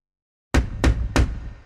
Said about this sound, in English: Then three loud knocks.